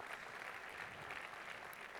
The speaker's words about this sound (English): Amen. Let's give the Lord a clap offering for that word.